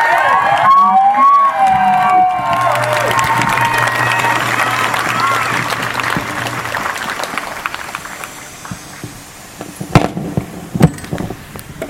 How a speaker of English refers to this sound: Thank you so much for that powerful speech. Can we get another round of applause for that speech, please?